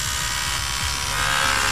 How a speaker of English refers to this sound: That actually is a vibrating toothbrush.